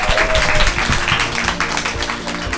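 Audience applause: a steady, dense wash of many hands clapping at once, loud and continuous throughout, with a faint murmur of voices mixed in beneath.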